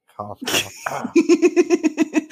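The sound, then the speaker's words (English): A single sharp, explosive cough, followed immediately by a run of about nine quick, rhythmic laughing pulses from the same voice. “Cough.”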